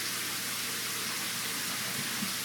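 Steady, unbroken hiss of shower water running, a dense wash of spray at a constant moderate level with no voices or other sounds.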